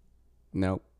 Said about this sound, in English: No, my cat. There she is again.